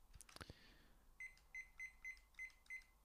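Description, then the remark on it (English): A few clicks and rustles, then a small electronic cooking timer, being set for seven minutes, gives six short, evenly spaced beeps, each a thin high tone, moderately loud. “So, as always, got my wee cooking timer here.”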